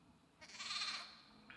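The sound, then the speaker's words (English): A single sheep bleats once, a wavering, nasal cry lasting under a second that rises clearly above a quiet background, with no talking. “Any of you know anything about a sheep?”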